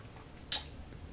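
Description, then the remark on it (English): A single quick, wet slurp of someone sipping Jefferson's Reserve bourbon, a brief hissy burst that fades fast against near silence, with no talking. “Oh, let me take a sip on that one.”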